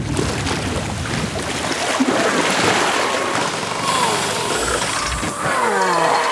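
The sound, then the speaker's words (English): Someone rattles and jerks at a shut door, metal latch clanking and scraping repeatedly for several seconds, fairly loud, over a steady rushing background. “And yes, the door is shut.”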